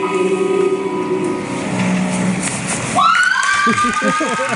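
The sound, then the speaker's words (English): A big concert crowd cheers and shouts after the songs end, a loud, steady roar of many voices, with a shrill whistle-like cry cutting in partway through and excited yells after it. “Listen to how excited the crowd was when they were done with these songs.”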